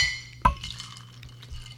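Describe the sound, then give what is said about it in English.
A single bright, sharp clink of glasses touching in a toast, followed by a faint ringing tail and soft handling noise against a low background hum. “Raise a glass, boys, to our first podcast. Cheers.”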